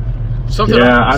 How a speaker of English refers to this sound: I know your car pulls in.